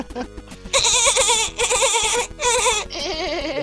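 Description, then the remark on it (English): A voice imitates a dolphin with three long, high, warbling squeals in quick succession, loud and wavering, over a steady low rhythmic pulse in the background. “Yeah, I'm still making the dolphin sound.”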